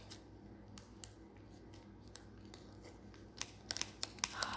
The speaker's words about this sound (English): Do you ever hate it when scissors just don't work? Oh, I got it. Actually, they do work.